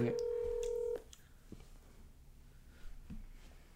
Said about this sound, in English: But, oh shoot, I accidentally pressed call already. It's okay. But, yeah, let me call her.